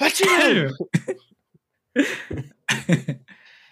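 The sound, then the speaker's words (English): A person loudly imitates a sneeze, with a drawn-out vocal buildup followed by sharp, breathy bursts and a trailing hiss, with no other sounds. “It's like as he asked, I like sneeze really loud.”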